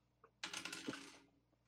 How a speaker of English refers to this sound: This dice is getting punished. Goodbye, die.